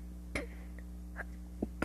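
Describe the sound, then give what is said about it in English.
A single abrupt sneeze bursts out early, followed by a few faint breathy sounds and small clicks, all over a steady low electrical hum. No one speaks. “Oh, I gotta sneeze.”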